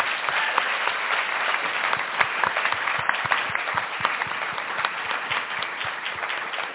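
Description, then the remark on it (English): Sustained applause from an audience for the evening's speakers, a dense crackle of many hands clapping at a steady, fairly loud level for several seconds with no voices over it. “Can you please join me in giving them another round of applause?”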